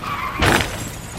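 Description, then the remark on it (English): A sudden, loud crash of two trucks bursts out with glass shattering, a sharp smash that fades quickly into a lingering rumble. No voices are heard. “That other truck came out of nowhere. How did that happen?”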